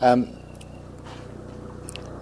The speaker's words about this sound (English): It's a helicopter.